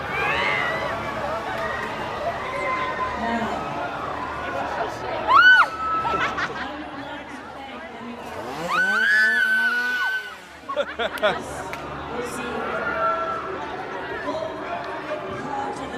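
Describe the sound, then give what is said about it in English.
A noisy crowd of teenagers chatters and shrieks, with a sharp scream near the middle and a longer rising wail a few seconds later, all over steady babble. “Well, you're like grabbing by random screaming teenagers.”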